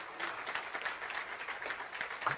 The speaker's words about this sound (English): Amen. Somebody clap their hands.